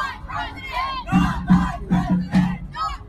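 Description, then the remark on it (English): A large crowd of some 4,000 angry demonstrators protesting Trump's election victory in the streets, shouting in angry, rhythmic bursts, roughly one loud chant-like surge every half second, voices massed and raucous over a constant low rumble of noise. “Some 4,000 angry demonstrators over Trump's election victory taking to the streets.”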